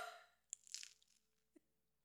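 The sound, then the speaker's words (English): A crisp crunch of a blindfolded person biting into a crunch wrap, followed by a cluster of crackling snaps and a lone sharp click, fairly quiet with no talking. “Now I want you to bite it.”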